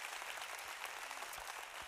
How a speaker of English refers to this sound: Can we just take 10 seconds here, put our hands together? Let's worship the King of Kings and the Lord of Lords. Come on, church. Oh, come on, somebody clap like he's good to you. Good.